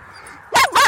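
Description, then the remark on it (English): A dog named Peter barks protectively twice in quick succession, two loud, sharp barks after a brief quiet moment, with no talking. “It's really strange how protective Peter is. I mean. He doesn't normally do that.”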